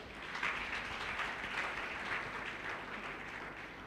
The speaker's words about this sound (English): Praise the Lord. Clap for Jesus.